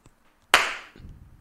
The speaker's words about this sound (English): It's a clap. It's a uh-oh. Slow clap. Everybody uh-oh. Join in. Yes. That's good. Faster.